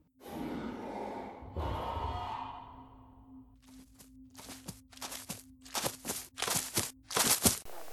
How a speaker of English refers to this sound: While she was thinking, she didn't hear the shuffling of feet behind her, or the heavy breathing.